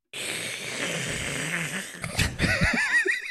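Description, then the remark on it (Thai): Someone loudly slurps Mama instant egg noodles: a long, wet, airy suck, then a burst of choppier slurps with squeaky, wavering whistles toward the end. No one speaks. “อ๋อนี่คือเสียงกินมาม่า บะหมี่ไข่นะ อ๋อบะหมี่ไข่อ๋อ”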